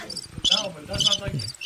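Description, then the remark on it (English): Crickets chirp in quick, repeated high-pitched bursts, fairly loud, pulsing in a steady rhythm, with a faint low murmur underneath. “Where the crickets?”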